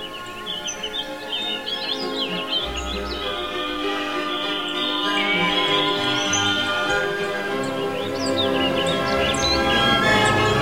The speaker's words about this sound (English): So Hansel and Gretel just followed a trail of singing birds all the way home.